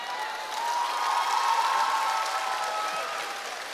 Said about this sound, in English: Now, I know the applause is good, but I'm not saying it because of the applause.